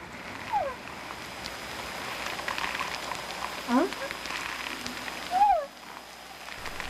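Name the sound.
whales singing underwater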